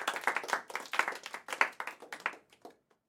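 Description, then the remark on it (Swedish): A short burst of applause added as a sound effect, many hands clapping briskly, holding steady for a couple of seconds before thinning out into a few scattered final claps. “Så kan du nog klippa den, lägga på en applåd sen, så går vi vidare.”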